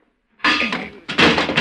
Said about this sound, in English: One more tap and the door will come off.